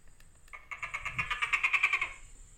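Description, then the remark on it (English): A Tokay gecko's scream: a rapid, rattling train of sharp clicky pulses that grows louder and quicker, oddly like a camera shutter firing, then cuts off abruptly. “That's a camera shutter, it sounds like, but it was a gecko scream.”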